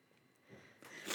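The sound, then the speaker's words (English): A quiet stifled sneeze: a few short breathy hisses and catches of air building over about a second, held back rather than released, with no talking. “I was going to sneeze.”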